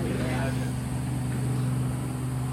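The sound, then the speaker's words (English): A helicopter passing overhead gives a steady, low droning engine hum with a rough mechanical rumble, holding at an even loudness throughout, with no voices and no breaks. “Again, I can't prove this, and I will wait till the helicopter goes over. That's such a freaky sound to me every time I hear a helicopter.”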